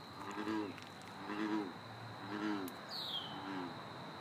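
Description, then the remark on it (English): A frog near a pond gives four low, resonant croaking calls about a second apart, steady, over a constant high insect-like drone, with one brief bird chirp near the end. “Okay, that's got to be a frog, right?”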